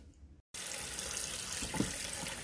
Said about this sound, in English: Alright, washing dishes from yesterday. Right now.